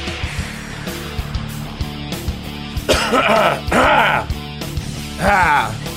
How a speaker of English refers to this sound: We need to cough.